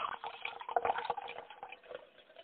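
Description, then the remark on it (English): Water sloshes and gurgles inside a plastic water bottle in a quick run of irregular splashy pulses that ease off toward the end, with no talking. “I'm on my third water bottle right now.”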